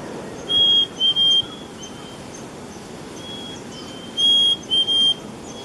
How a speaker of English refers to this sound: That's a black-capped chickadee, plentiful in the Mountain State.